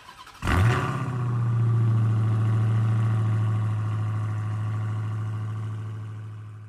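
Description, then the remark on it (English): A car engine catches with a sudden burst and settles into a steady, low idle in city traffic, rumbling continuously for several seconds with no voices. “I just hit city traffic, so you know what that means.”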